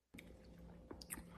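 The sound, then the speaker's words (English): Wet crunching and squishing of someone chewing a pickle, with a few sharp crisp bites over a steady low background hum. “I just listened to Matthew McConaughey eat a cock pickle”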